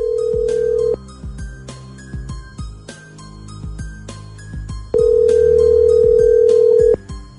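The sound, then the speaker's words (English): A phone call being placed by a radio show: a quick run of dialing beeps and tones, with a steady ringback tone droning before and after, loud with no one talking. “We'll get her on the phone and we'll find out what's going on, okay?”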